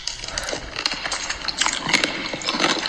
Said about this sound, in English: Okay, that pickle has a lot of reverb. Her mic, I think. But it's just her like chomping on okay, a pickle.